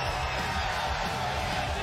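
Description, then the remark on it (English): A large arena crowd, the largest live crowd in TNA wrestling history, roars and cheers inside the Alamo Dome in San Antonio, Texas, at the TNA Lockdown event, in a steady, dense wash of noise that stays loud and unbroken from start to finish, with no single voice standing out. “You are looking at the largest live crowd in TNA wrestling history, and they are Texas-sized fired up for lockdown.”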